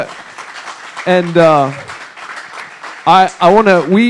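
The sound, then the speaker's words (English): A crowd claps steadily on Veterans Day for men and women who have served or are serving in the armed forces, while a couple of voices call out and whoop over the applause in two short bursts. “Yes, I was going to say, give them a clap.”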